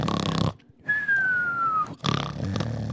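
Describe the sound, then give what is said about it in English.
A voice imitates an exaggerated cartoon snore: a loud, rough nasal inhale, then a thin descending whistle on the exhale, followed by another raspy snorting breath, loud with no words. “And I'd be snoring like in a cartoon going...”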